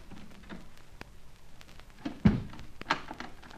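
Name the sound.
door shutting and locking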